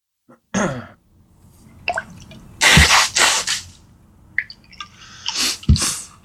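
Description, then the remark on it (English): A run of sneezes caused by bad sinuses, several loud explosive bursts spread over a few seconds, with quieter sniffs and breathy noises in between. No one speaks. “Bad sinuses.”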